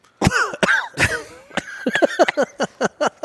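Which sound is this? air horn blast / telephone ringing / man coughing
man coughing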